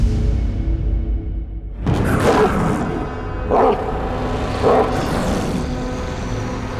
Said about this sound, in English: The distant barks of a monster woke the sleeping man.